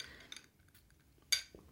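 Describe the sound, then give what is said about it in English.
A few light clinks of a glass and a ceramic coffee mug, both show merchandise, knocking together with bright ringing tones, then one sharper, louder clink near the end, all fairly quiet. “I have these t-shirts, I have my coffee mug, I have this glass”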